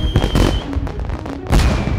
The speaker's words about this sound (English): They were like, we went from unbelievable thunder to just nonstop fireworks.